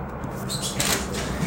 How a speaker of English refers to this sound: Just hears the door opening.